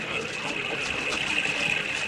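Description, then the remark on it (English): A steady, continuous roar of a rushing waterfall, fairly loud, a dense hiss that holds constant throughout with no voices or other distinct sounds. “Follow me with them wagons into the riverbed and under the waterfall.”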